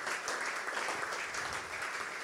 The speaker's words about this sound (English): Just to let you know, 17 kids have come to faith since the summertime. 17. You know, I think that deserves a round of applause.